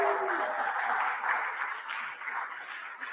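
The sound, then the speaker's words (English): A crowd applauding and cheering steadily, a dense wash of many hands clapping with whoops mixed in, fairly loud and sustained throughout, with no distinct talking. “Give them a hand and shout out loud. Clap your hands and show them around.”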